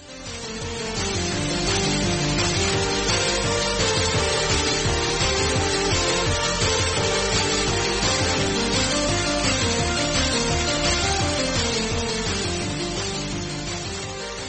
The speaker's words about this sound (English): Okay, yeah, just crumpling up some cables.